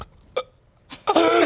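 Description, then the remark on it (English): A voice imitates snoring: a quick nasal snort, a pause, then a longer, louder rasping snore with a rough, buzzy tone. No talking is heard. “I am already that person who snores on an airplane”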